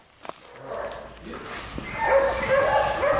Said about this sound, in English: Dogs guard the precious wood stacked outside. Schaefer pulls them away